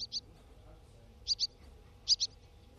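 A swallow calls with short, high chirps, mostly in quick pairs, repeated four times over a low, steady background rumble. The notes are clear.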